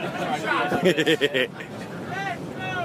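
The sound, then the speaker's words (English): A group of fans on a bus trip chants the rhythmic "Let's Go Met" cheer in unison, several loud evenly spaced syllables, over the steady rumble of the bus and background chatter. “And the Let's Go Met chant has started.”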